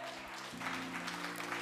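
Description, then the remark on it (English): A crowd breaks into steady applause and shouts of praise to the Lord that swell after a moment and keep going, with sustained low keyboard chords droning underneath. “Hey, if you believe that the Lord is going to do something in your life from what you just heard today, will you just give him a big shout of praise and clap today?”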